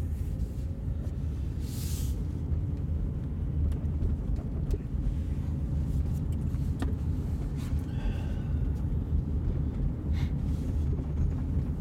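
A steady, deep engine rumble from inside a truck cab on a cold, frosty, windy day, droning evenly the whole time with a few faint clicks and rattles over the top, and no one talking.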